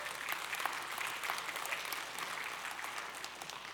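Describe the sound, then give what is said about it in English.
An audience claps for the Lord in a dense, continuous patter of many hands, holding a steady, fairly loud level for several seconds with no voices standing out. “Clap for the Lord.”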